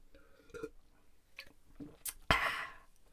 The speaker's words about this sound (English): That right there, what I just drank, is a High Noon Sun Sip vodka and soda. They're delicious. They are delicious. I got my draft top, took off the top. They're so good. So if you hear me, that's my High Noon.